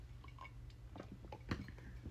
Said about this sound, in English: I'm drinking my water.